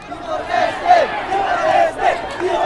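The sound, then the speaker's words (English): Thousands of marchers sing, chant and pray together in the street in front of Dili's Mota Church at 8 o'clock in the morning on the 27th anniversary of the Santa Cruz massacre. Many voices blend into a steady, swelling wash of sound with rising and falling pitched phrases and no individual speech. “Despite the early morning heat, the street is full of people singing, chanting and praying.”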